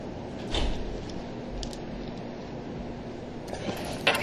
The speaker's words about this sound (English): can you pull that door shut for me there? Thank you.